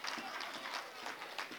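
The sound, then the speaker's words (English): A short burst of scattered clapping from a small group, the claps uneven and overlapping, steady at a moderate level throughout. “I mean, can we clap for the weekend?”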